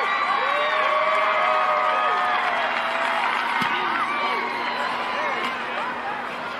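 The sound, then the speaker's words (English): A large stadium crowd at a football game roars and cheers continuously as a woman kicker is about to kick the ball, a dense wash of many voices with scattered shouts and whoops rising above it, loud and sustained throughout before easing slightly near the end. “You can hear the crowd.”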